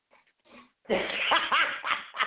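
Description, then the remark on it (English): A dog, Otis, makes excited, playful vocal noises: a few faint snuffles, then a loud run of grunting, whiny yips and huffs lasting over a second, with no talking. “We have help from the dog today.”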